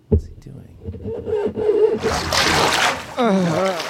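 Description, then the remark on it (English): Water splashes and sloshes in a toilet bowl for about a second, fairly loud, as someone plays in the toilet, with a person's voice speaking before and after it. “Is he playing in the toilet?”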